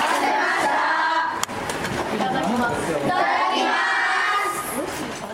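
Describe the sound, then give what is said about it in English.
A group of children clap their hands together once in a single sharp burst, as a mealtime ritual before eating lunch, surrounded by loud, continuous children's chatter and shouting before and after. “So that clapping of the hands, that's so a ritual.”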